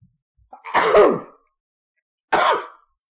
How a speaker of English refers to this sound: Now, somebody said Gesundheit. Supposedly, you're not supposed to say Gesundheit if it's a cough instead of a sneeze.